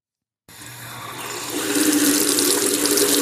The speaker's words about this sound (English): Maybe a shower. Yeah, good job. That was an easy one. Kind of the same backwards or forwards, I feel like.